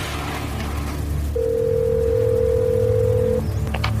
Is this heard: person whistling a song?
no